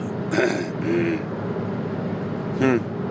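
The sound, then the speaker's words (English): A person clears their throat, three short raspy bursts: two in quick succession near the start and another a moment later, over a low steady background hum. “Let me clear my throat.”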